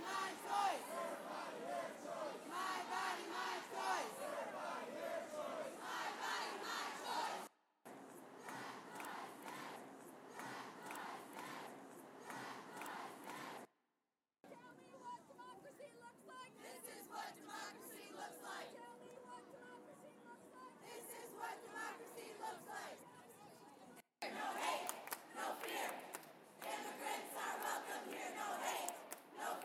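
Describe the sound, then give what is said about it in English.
A large crowd chants in rhythmic unison at a protest, loud and continuous, with brief cuts between segments and a swell of shouting voices and babble throughout. “And then the chants started.”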